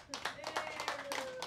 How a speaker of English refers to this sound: So let's give a hand to the Hanley family.